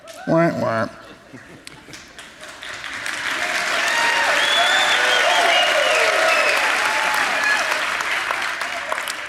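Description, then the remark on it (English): An audience at a church service breaks into applause after a brief shout, the clapping swelling into a loud, sustained, dense wash dotted with scattered cheers and whoops that carries on to the end. “I will say, based on applause, I think first service was more appreciative than second service.”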